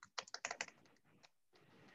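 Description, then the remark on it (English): A quick burst of clicky keystrokes on a computer keyboard, about a dozen sharp taps in an uneven rhythm, then a pause and a soft rustle with a couple of faint final taps. “I wonder if my keyboard works now.”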